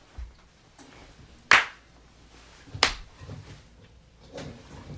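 Two sharp, loud hand claps about a second apart, made for audio sync before filming, stand out against a quiet, faintly rumbling background, with no one talking.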